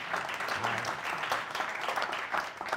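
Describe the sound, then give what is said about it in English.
An audience at the City Club of Cleveland applauds itself for being there, dense continuous clapping, fairly loud and sustained, with a faint voice briefly audible underneath. “Usually I ask the audience to applaud themselves for being here, so why don't you give yourselves another round of applause?”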